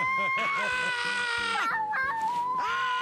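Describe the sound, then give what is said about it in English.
A baby girl lets out loud, sustained high-pitched screams in a few long bursts, strained, with brief breaks between the shrieks. “she just loves to randomly scream now”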